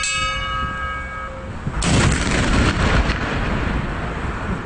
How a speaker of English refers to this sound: Oh, I tell you, trying to record the noonday gun, because you've only got that one opportunity.